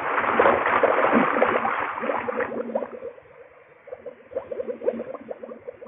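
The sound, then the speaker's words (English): Muffled, continuous bubbling and gurgling that thins out into a steady stream of separate, burbling bursts, as air escapes from a diving helmet valve underwater while a diver sinks through green water, with no voices. “The only sound was the air bubbling out of the helmet valve.”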